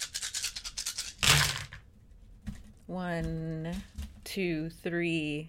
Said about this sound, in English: Let's get some pretty metal dice in here.